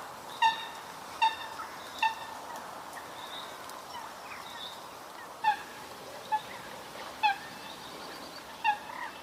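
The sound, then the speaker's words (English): A coot gives about seven short, sharp honking calls at irregular intervals, distinct over a faint, steady outdoor background, with no talking. “And on that note, I'd like to play a little bird there, bird call, while we're talking about them.”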